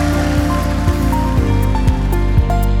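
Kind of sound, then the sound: crowd, audience clapping hands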